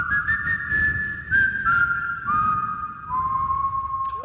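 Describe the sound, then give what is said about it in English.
Someone whistles a slow, wavering melody of long held notes that step gradually downward, the pitch sounding a bit off, all washed in heavy echoing reverb over a faint background hiss. “The reverb did not make you sound better because you were not on key.”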